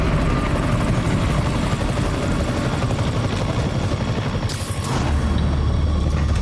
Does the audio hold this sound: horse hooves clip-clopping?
no